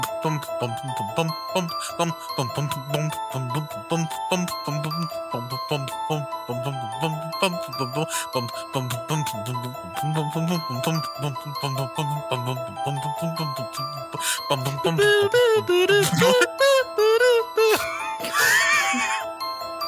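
An eerie bell-like melody repeats in a steady, looping pattern, its chiming tones sustained throughout at moderate volume, with a brief swell of wavering, voice-like sounds near the end.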